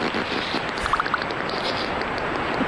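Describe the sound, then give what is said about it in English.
A voice imitates canned pasta being poured into a bowl: a steady, wet, breathy rush lasting a few seconds, with a brief cluster of small squelchy pops early on. “This is what it sounds like when you open a can of SpaghettiOs and you pour it into that bowl.”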